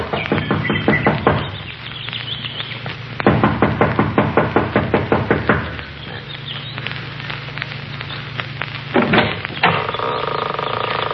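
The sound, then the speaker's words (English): A young woman knocks impatiently on the wooden front door of a small mountain lodge. The loud knocking comes in quick, insistent bursts: a rapid flurry, a pause, then another long rapid volley, and a few final raps near the end. No one speaks. “runs up the steps of the lodge to the front door. She knocks impatiently, looking about anxiously.”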